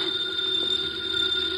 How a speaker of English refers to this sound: The phone is ringing. Let it ring. Just as you say. It's the house phone